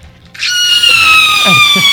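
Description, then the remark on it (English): A loud, shrill screech sustained for over a second, sharp and piercing and dipping slightly in pitch, a voice imitating a creature's cry after a brief quiet start. “She actually screeches at this. It's the worst sound you've ever heard.”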